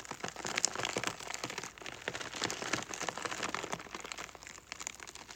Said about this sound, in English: So what was it? Just iceberg lettuce. So what I'm doing is I'm just pressing down and rolling the lettuce on the table.